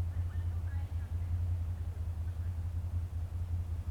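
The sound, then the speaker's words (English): Motorcycle engines started by people in a park idle in the background with a deep, steady rumble that holds for the whole stretch, fairly loud, with no clear revving or pauses. “They thought it was a good idea just to follow me to the park and start their motorcycles for some reason.”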